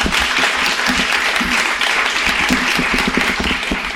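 A crowd applauds steadily, a dense wash of many hands clapping at an even, loud level for several seconds, with a few faint voices mixed in.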